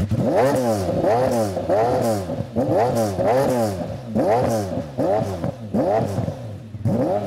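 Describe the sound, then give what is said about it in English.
The naturally aspirated German engine of an F1 car revs up and drops back again and again, about eight quick blips in a steady rhythm, loud with a rich harmonic growl and no talking. “that engine shouldn't require a rebuild for at least 250,000 kilometers. Whatever the fuck that means, it's a German engine.”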